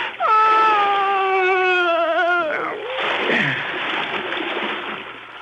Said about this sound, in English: He slumped over his wife's body. I closed my ears to her moans, and I pushed them both into the dark water.